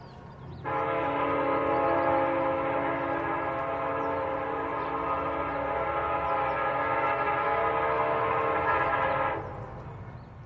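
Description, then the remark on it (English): A freight train crossing the prairies sounds its long, low whistle as one steady, sustained blast lasting several seconds, loud and clear over a faint rumble of rail noise, then cuts off. “The long, low whistle of a freight train crossing the prairies.”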